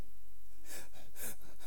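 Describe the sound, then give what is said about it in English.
A voice imitates anxious heavy breathing, a few quick, noisy gasping breaths in and out, fairly loud, with no talking. “The anxiety is not always, I don't know why we always do the heavy breathing and the breath with anxiety, because that's not always, anxiety could be fidgety.”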